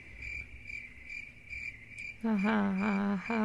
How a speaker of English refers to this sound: I'll put the crickets right here. Put the crickets right here.